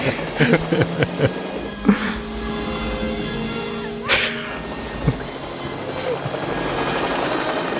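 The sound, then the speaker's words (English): A helicopter hovers low over a car, its engine and rotors a steady, loud droning whine throughout, broken by a few sharp knocks and bangs in the first half. “You can't land a helicopter on a car, of course.”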